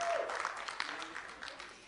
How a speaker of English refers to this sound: Let's give them a clap.